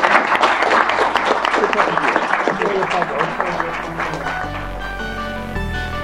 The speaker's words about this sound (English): So maybe we can give a round of applause to all of our panelists.